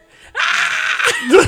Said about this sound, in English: Screaming again.